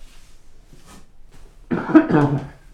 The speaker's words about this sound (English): I got a cough.